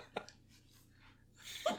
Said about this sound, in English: I got the hiccups now. Yeah, I can hear them. It's good. Oh damn shit, it. That was a big one.